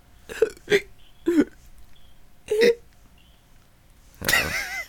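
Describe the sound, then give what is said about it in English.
A person fakes hiccups by rapidly taking in air while moving the shoulders upward: four short, sharp hiccup-like catches at uneven intervals, followed near the end by a longer, breathier vocal sound. “How did you do a hiccup there? That's pretty impressive.”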